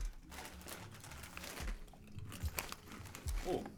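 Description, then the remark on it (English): Loud crunching of light, oven-baked sour cream and chives potato chips being chewed, with repeated sharp crisp bites and crackles over several seconds and no talking. “A lot more crunch to them. Now, that is microphone worthy.”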